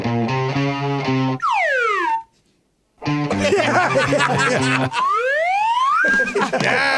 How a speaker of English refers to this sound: The slide whistle can make any song sound better.